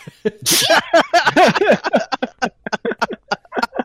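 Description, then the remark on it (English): A single loud sneeze bursts out near the start, sharp and hissy, followed right away by voices talking and reacting for the rest of the moment. “Such a manly sneeze.”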